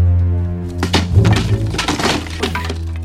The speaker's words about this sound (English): Smashing that chair won't help, sir.